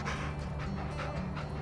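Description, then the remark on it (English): A female dog named Sally pants in quick, rhythmic breathy huffs, repeating steadily over a low background hum with no one speaking. “Oh, who's a good girl? Yes, yes. Do you want a treat? Come here. Sit.”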